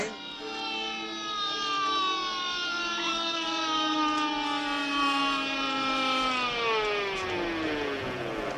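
ambulance siren wailing

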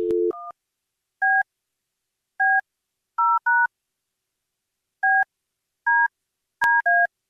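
telephone number being dialed

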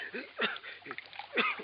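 water being poured

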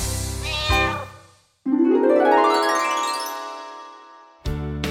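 cat meowing

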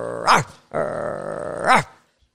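dog growling and barking

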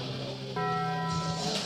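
bell chime

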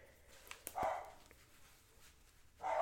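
dogs barking

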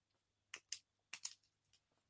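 pen clicking

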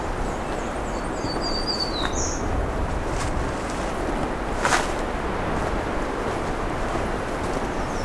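wind blowing across microphone

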